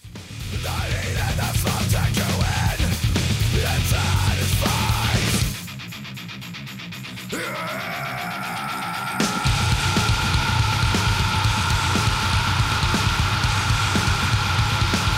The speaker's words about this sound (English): if you go to 403, the scream outro on this song, quite something else. Here we go.